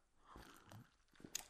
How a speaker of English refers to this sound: Sip iced tea for the last week of iced tea on the show. Iced tea will be banned from the show after this.